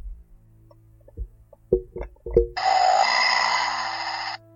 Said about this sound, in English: It's that weird, like, truck dinosaur sound.